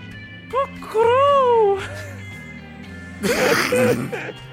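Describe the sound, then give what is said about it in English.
A person imitates an animal howl as a call for backup, a short wavering cry that swoops up and down, followed by a burst of noisy, overlapping voices over a steady low hum. “give me the howl for backup.”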